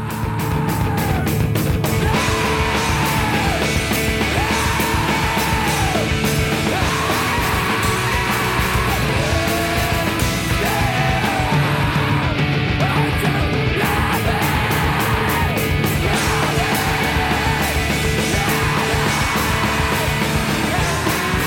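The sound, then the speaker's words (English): A man screams loudly in repeated drawn-out bursts over dense, distorted, full-volume music, each yell rising and falling every couple of seconds without a break. “Sorry, can I just say, by the way, if you tune into No Encore this week to hear lots of screaming men, you're in luck.”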